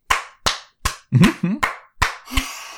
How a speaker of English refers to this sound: Leon starts clapping.